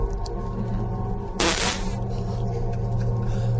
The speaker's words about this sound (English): Wait, would the farts sound different, too? Yeah. Oh, okay. Here, I'll put reverb on the farts. Ready?